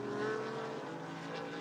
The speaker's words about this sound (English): But it is the tremendous battle at the front of the field in GSX between the first two, check that, the first three, and then another 4 cars battling for fourth on down, led by the number 88, the blue and silver BMW of Patrick Wilmott.